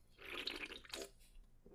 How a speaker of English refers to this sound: I know those audio listeners at home love the slurping. The slurping is key.